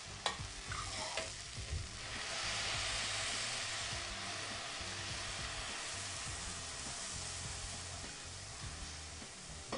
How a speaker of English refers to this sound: Now that our vegetables are starting to soften up, I'm going to add some vegetable broth. I've been heating some here beside the pot, I'm going to put about 3.5 cups in.